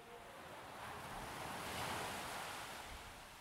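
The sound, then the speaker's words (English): A steady, rushing wash of rainwater, pumped from underground tanks, pouring down the glass front of a gallery building as a water wall. It is continuous, swelling slightly in the middle before easing back, with no voices. “famous water wall, where rainwater is pumped from underground tanks and then cascades down the glass front of the building.”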